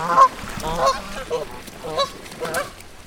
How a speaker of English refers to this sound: The only traffic problems I ever have are I've got some geese that come out from one of my neighbour's houses every single morning and cross the road.